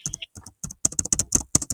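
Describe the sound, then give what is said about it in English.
Rapid clicking of keys on a computer keyboard as someone looks something up, an irregular burst of sharp taps with short pauses between clusters, fairly loud and with no voices. “I don't know if my typing is really loud.”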